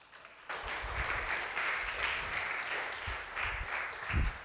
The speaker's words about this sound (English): Let's give him a clap.